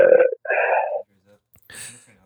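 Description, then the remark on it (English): Two loud belches follow one another quickly, the second one longer and more drawn out. After a short pause comes a brief, raspy, breathy sound. “doesn't let us burp on air, so.”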